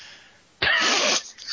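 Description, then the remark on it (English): A single loud, drawn-out sniff by a man in a bedroom, a harsh breathy rush of air lasting about half a second, with quiet background before and after and no talking. “Now he's in the bedroom with me sniffing like an asshole.”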